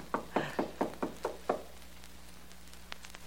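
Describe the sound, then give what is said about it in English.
Six sharp knocks on Mr. Stone's apartment door at 2 a.m., in a quick, steady rhythm, clear, followed by a quiet pause with a faint low hum and a few soft taps. “There's one way to find out. That's his apartment door.”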